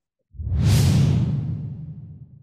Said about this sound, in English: So here we go. Swoosh, swoosh. Swoosh.